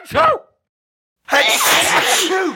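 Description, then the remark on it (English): A brief voiced intake, a pause of about a second, then a loud, drawn-out sneeze burst lasting over a second, harsh, with a rough breathy spray of noise. “No, no, I don't want you to sneeze.”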